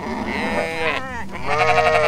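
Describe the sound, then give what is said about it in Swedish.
Sheep bleat loudly, two long wavering cries in quick succession with a shaky, quavering tone, and no one talking. “Men det var i det lilla huset på baksidan som hade sin entré ut mot skogen som min farbror lät fåren bo.”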